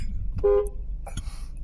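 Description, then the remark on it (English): A single short car horn honk, a bright buzzing tone lasting about a quarter second, sounds over a steady low engine rumble, followed by a few brief scuffing noises. “Why did he beep at him though?”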